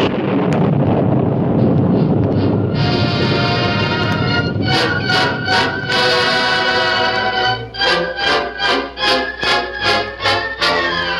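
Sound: thunder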